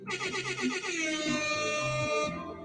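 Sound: air horn sound effect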